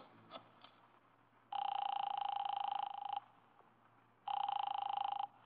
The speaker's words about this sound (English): I drove down to the document research laboratory on Vanderbilt and got such a shock that I grabbed the office phone and dialed Wolfe at once.